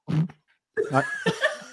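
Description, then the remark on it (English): A person blows a comic, sputtering cartoon-style fart noise with their mouth: a short burst, a brief pause, then a longer, wobbling raspberry that rises and trails off, fairly loud. “It was a wee cartoon pump. I can even hear the noise of it.”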